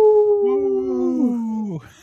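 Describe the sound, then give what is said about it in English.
A person imitates a wolf howl on Native Roots Radio, a single drawn-out howl, steady and fairly loud, sliding gradually downward in pitch before breaking off abruptly after nearly two seconds. “This portion of the show is supported by Howling for Wolves, protecting wolves for the future generations.”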